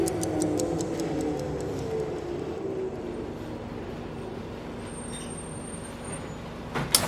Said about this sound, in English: About half an hour passes, and the bus pulls into the bus station.